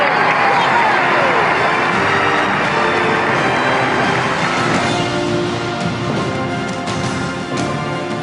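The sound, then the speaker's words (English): A vast crowd of thousands upon thousands of people, gathered to share a historic day with the King and Queen at the end of World War II, roars in a continuous, loud wash of cheering and overlapping voices, with no pauses, a dense sustained swell of celebration that eases slightly toward the end. “Thousands upon thousands of people gathered to share this historic day with the King and Queen. Listen to the crowd.”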